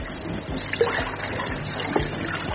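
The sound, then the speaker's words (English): Water being stirred in a bowl holding 10 liters of water while nitrosone is poured in to dissolve, a steady sloshing and swirling with a couple of small splashes or knocks. There is no talking. “And you stir as you pour, you stir.”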